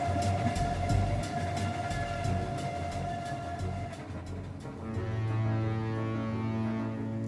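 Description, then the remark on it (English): A train rolls steadily along the rails with a loud, continuous rumble, a regular clack of wheels over track joints, and a droning hum that shifts briefly midway. No one speaks. “That's when I decided it was time to get the hell off the train.”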